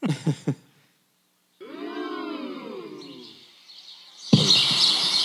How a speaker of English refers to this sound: Look on YouTube for a sound bite or a sound clip of birds. Peaceful. And just play that video. Chirping.